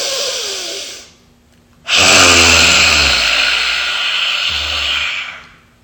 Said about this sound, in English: And you can hear that growl, that purr. That is what we want. We want to vibrate the vocal cords. We want to break things up. We want to roar.